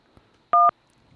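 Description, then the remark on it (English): A single loud telephone keypad beep, a short steady dual-tone press lasting a fraction of a second, made while dialing an extension on the phone line of School District 99 South High School, surrounded by near silence with faint low background noise. “What's all this beeps?”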